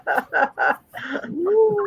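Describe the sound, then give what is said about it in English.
A chicken clucks: three quick, evenly spaced clucks, then a rougher squawk that trails into a thin, rising whine. “I asked her to grab a chicken, but she didn't hear me, so I just went and got them.”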